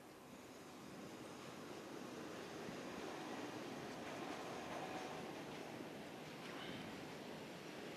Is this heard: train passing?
yes